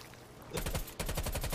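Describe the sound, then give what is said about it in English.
Rapid bursts of automatic gunfire from a MAC-10 submachine gun in a video game, two loud sprays of fast, evenly spaced shots separated by a brief pause, with no talking. “Wow, I just got sprayed around the freaking corner with a MAC-10.”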